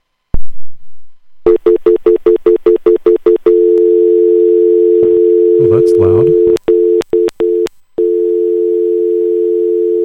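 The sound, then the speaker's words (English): A loud, steady telephone dial tone from a phone just taken out of its charger hums on after a quick run of short pulsed beeps, broken by a few brief clicks, with a person speaking briefly over it. “Let me see if I can get a dial tone.”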